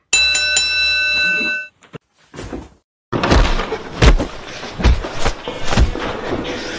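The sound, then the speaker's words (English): A loud, bright fight bell rings out with a couple of quick strikes and a sustained metallic tone to start a fight, then cuts off; after a brief pause, a rough, noisy roar with heavy thuds follows. “Ring the fucking bell.”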